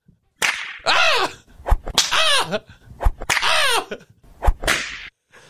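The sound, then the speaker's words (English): Three sharp whip cracks snap out at a steady interval, each followed by drawn-out pained cries and groans from a voice that fill the gaps between strikes. “Oh, give no. me that whip.”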